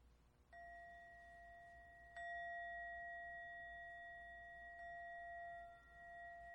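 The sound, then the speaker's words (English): A mindfulness bell is struck three times between readings by members of a group, each clear metallic tone ringing out and sustaining into the next strike, with no talking around it. “Before and after each person reads, we ring the bell to remind us that we want to train our ears so that we can hear and receive whatever this person is saying.”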